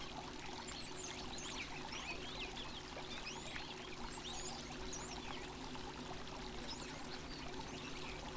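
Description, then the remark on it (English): Water trickles and splashes steadily into a small pool crafted from colorful hand-cut mosaics in a clearing, a continuous pour, while bright bird chirps flit over it throughout. “Find the camel in a clearing, drinking from a small pool crafted from colorful hand-cut mosaics.”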